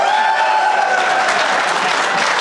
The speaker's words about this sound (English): So, okay, applaud if you've smoked weed at this place before.